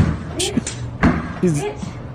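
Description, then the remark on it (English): A woman pounds on a house's front door: a few heavy, irregular thuds while people speak loudly over the banging. “She's hammering through the front door.”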